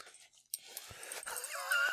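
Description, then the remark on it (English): A dog licks a person's face, with wet, snuffly smacking sounds, then lets out a short, high whimpering whine at the end. No one speaks. “Now I'm getting doggy kisses.”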